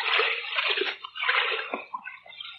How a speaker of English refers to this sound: Water's not so deep. It's only up to my waist.